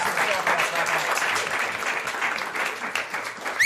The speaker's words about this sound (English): By the way, can we get a round of applause for Dr. Martha Stark? Yes.